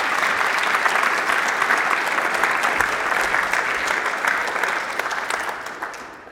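A crowd claps in a steady, dense round of applause that holds strong for several seconds, then gradually thins and fades out at the end.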